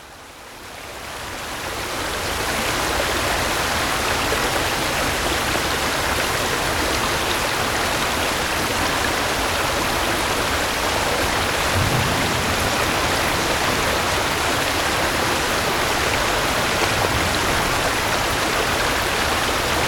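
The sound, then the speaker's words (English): A steady, dense rush of fast-flowing river water fills the scene, building up over the first couple of seconds and then holding loud and constant, with no voices. “Ah, river flowing faster, beautiful sound.”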